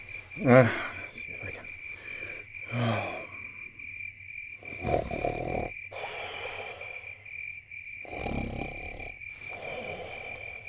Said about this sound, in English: That's probably just the crickets.